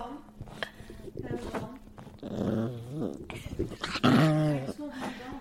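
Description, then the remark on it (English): An 11-year-old dog scratches and digs at sofa cushions, with rustling bursts mixed with low growls and whiny grumbles, while people talk over it. “They dig for bones. But in the sofa.”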